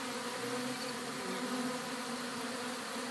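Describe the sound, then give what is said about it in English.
A steady, dense buzzing of many bees, continuous and fairly loud, droning without pause as of a hovering swarm. No one speaks. “Come back for you bees.”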